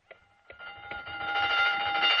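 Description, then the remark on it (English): The closing bell at Kane's department store rings at the end of the afternoon in one continuous, steady metallic tone that swells louder over a couple of seconds, after a couple of sharp clicks at the start. No one speaks. “It had been a long, long afternoon behind the counter, and the girls were glad to hear the closing bell.”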